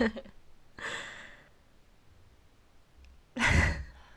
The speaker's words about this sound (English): yawning.